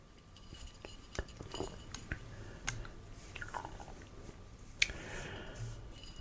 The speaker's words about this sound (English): I took a sip, and ginger's there, but the malt didn't really stand up